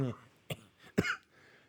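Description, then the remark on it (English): A couple of sharp coughs with a rough throat-clearing sound, coming in short bursts after a brief bit of voice at the start. “Got caught up in a cough.”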